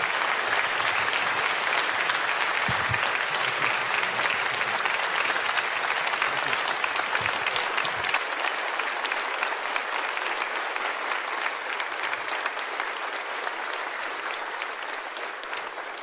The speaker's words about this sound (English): Can we give Chad Williams a big round of applause?